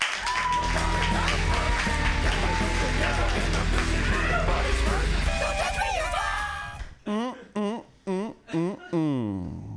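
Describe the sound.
A comedy show audience bursts into sustained, dense applause with some cheering for several seconds as a comedian is introduced, then the clapping fades out as a single voice begins talking in short bursts.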